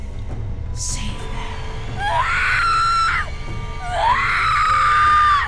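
A woman lets out two long, shrill screams, each rising sharply in pitch and held for about a second, loud and close, with a low rumbling noise underneath throughout.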